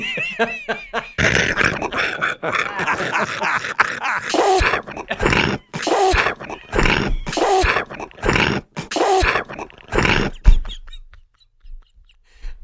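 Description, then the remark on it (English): A run of rough human vocal noises, growly grunts and throaty sounds, followed by about five loud, wet sneezes bursting roughly a second apart, then quiet; all the noises are made by the same man. “Those are all human noises from the same human.”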